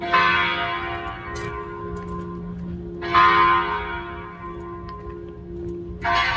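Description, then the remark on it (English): A church bell near downtown Phoenix rings out with three strong strikes about three seconds apart, each one clanging brightly and then humming away in a long, shimmering decay. No one speaks. “Let's go get this bell, shall we?”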